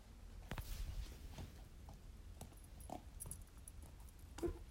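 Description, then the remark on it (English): A puppy named Macy gnaws and chews, making irregular crunchy clicks and scrapes scattered across a few seconds over a low, muffled rumble, with one sharper snap near the end. “You hear that chewing?”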